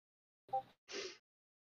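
A single sneeze: a brief voiced intake followed by a sharp, breathy explosive burst, then silence. No one is talking.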